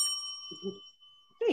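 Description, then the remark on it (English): A single bright bell ding rings out and decays slowly with a long shimmering tail, while brief snippets of a voice murmur quietly beneath it. “I'm going to give it a bell.”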